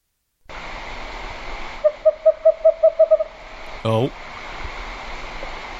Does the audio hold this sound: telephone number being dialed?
no